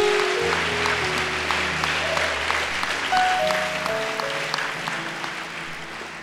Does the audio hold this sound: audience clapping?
yes